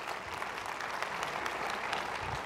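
A church audience applauds the Lord during a sermon, a steady dense wash of many hands clapping at once, holding a constant level for the whole stretch with no talking over it.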